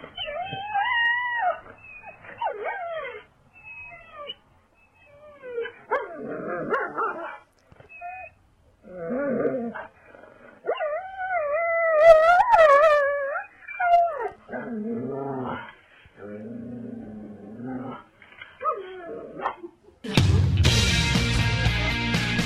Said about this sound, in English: Ever wonder what it sounds like when a dog is 30 feet away from a bobcat, separated by a glass door?